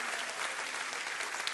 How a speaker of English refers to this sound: Why don't we celebrate the church tonight? Why don't we just celebrate the church tonight and clap our hands and say, yes, yes, yes, Jesus has established a glorious church.